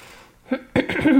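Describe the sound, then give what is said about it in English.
A short cough and throat clearing: one small rasp, then a rough burst of harsh clearing sounds that ends in a low, voiced grumble. “Big cough right there.”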